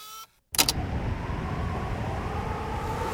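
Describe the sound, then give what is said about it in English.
After a short burst of high whistling tones and a brief gap, a steady, rough roar of wind buffets the microphone outdoors at the Arctic Ocean on a windy day, a loud low rumble that flutters unevenly for about three seconds. “It's a little bit windy that day,”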